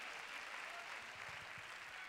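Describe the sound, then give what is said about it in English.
An audience claps their hands to praise God during a sermon, in a dense, continuous wash of applause, steady and fairly loud throughout, with no single claps standing out. “So you ought to clap your hands and praise God.”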